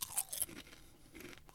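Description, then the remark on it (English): Crisp crunching of a potato crisp, Red Rock Deli Sweet Chili Sour Cream, being eaten: a few sharp bright snaps at the start followed by softer chewing, with no talking. “So I'm going to eat one of these crisps.”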